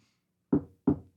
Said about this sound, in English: Knock on wood. I love using this unironically.